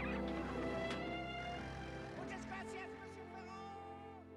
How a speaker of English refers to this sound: Chickens.